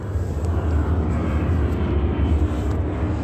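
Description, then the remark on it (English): A steady, loud roar of another airplane passing overhead less than 15 seconds after a previous plane, its broad engine rumble filling the low end continuously for a few seconds with no voices present. “Another plane.”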